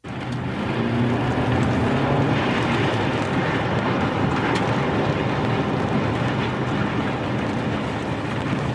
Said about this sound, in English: Did you see this video, Holman? I did, many times. It's pretty incredible. It's a tornado.